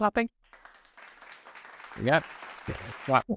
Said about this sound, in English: So where's the trumpet sound? Hang on, we can get one. No, but there isn't one. There's a clapping. I can do clapping.